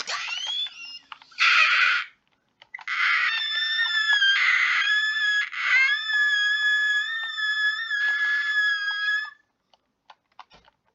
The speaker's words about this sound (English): A tea kettle for a second.